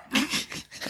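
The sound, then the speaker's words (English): A dog whimpers in short, uneven bursts, a moderately loud whiny sound that rises and falls over about a second with no one speaking. “I don't think your dog likes it that much, though.”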